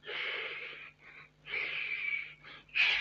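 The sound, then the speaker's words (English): Forceful breaths pushed out in a steady rhythm, three long hissing exhales with short intakes between, airy and bright, with no talking; a person demonstrating controlled breathing for throwing punches. “It's controlled breathing. I have to control my breathing.”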